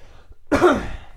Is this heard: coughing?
yes